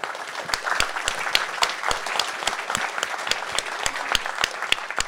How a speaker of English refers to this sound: So let's give a round of applause for our panelists.